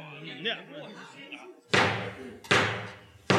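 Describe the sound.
A voice talks briefly, then three heavy, booming knocks strike a large town hall door at a slow, steady pace, each one loud with a short echoing decay.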